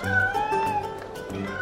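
Several cats meow at once in long, overlapping, wavering cries that fill the whole moment, loud, as a man juggles cats in the town of Baldur's Gate, with a few faint ticking knocks underneath.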